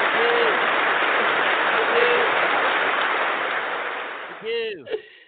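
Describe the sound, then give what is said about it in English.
A crowd claps in a dense, steady roar with occasional whoops and cheers rising above it; the applause gradually fades toward the end, closing with a couple of brief shouts. “Don't you want to just go do a show and go out on stage and they applaud?”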